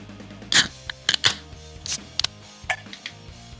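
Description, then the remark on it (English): Beers cracked open and poured, one a King Kolsch from Black Flag Brewing Company in Columbia, Maryland: a handful of sharp metallic clicks and brief fizzing bursts at uneven intervals, moderately loud, over a faint steady low hum with no talking. “Got to get the pour sound in there for sure.”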